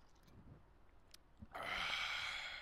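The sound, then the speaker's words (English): After a moment of near quiet, someone in a car slurps morning iced coffee through a straw, a steady, airy, hissing slurp that runs for about a second with no talking. “Take a nice slurp of the morning car coffee here for you.”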